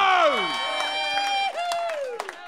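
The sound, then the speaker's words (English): A live audience cheers and whoops into a microphone pointed at them for a recording, with rising and falling shouts over scattered claps. The burst is loud, lasting a couple of seconds. “As I point the microphone at the audience to milk the applause for the recording.”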